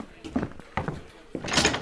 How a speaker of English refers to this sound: And he opens a door near the cage.